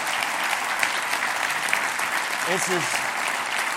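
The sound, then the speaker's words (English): A crowd in Bethlehem, Pennsylvania applauds steadily throughout, a dense, even wash of many hands clapping at once, with a brief vocal sound rising over it near the end. “Were you told to clap? You were told to clap.”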